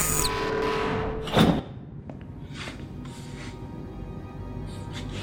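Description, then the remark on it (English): A cargo bay pressure door opens as the bay's environmental systems are activated: a steady mechanical hum gives way to a short, loud burst of hissing thud, then a low, rumbling background with a few faint clicks. “Cargo bay environmental systems active. Opening pressure door.”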